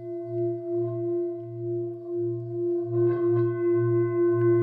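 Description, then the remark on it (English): A hand-beaten metal singing bowl made of alloys of nickel, brass and copper, with hollow walls that produce the sound, rings with a sustained, layered hum whose low tone wavers in a slow, pulsing throb. A brief scrape adds texture partway through, and no one speaks. “So you hold the singing bowls normally at the bottom,”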